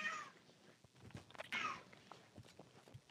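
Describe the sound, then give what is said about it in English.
A female cat in heat lets out two drawn-out, wailing meows, one right at the start and another midway, fairly faint, with soft rustling and thumps in between. “is horny there a ass cat categories in the background?”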